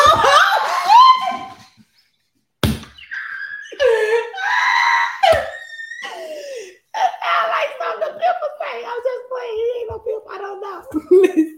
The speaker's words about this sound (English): That's why I had to leave. I had to get that scream out.